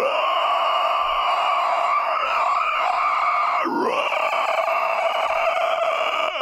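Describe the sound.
A voice lets out a long, shrill, piercing scream, performed as the unearthly shriek of a skeleton. It holds loud and strained for several seconds, wavering and briefly cracking midway before carrying on.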